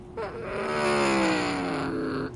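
Race car engines roar up to speed together as the green flag drops at the race start, a loud, sustained snarl rising in pitch as the field accelerates, steady for a couple of seconds.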